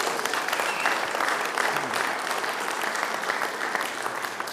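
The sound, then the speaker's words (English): A church audience at Bethany Church applauds the Kingdom kids steadily, dense clapping filling the whole stretch at an even, fairly loud level, with a wash of cheering mixed in and no speech over it. “Okay, give them a big cheer because all of them are here.”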